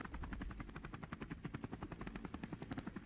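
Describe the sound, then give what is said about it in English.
A helicopter thumps steadily, its rotor blades chopping in a fast, even rhythm with a low engine rumble underneath; no one speaks. “Helicopter really makes this... dramatic.”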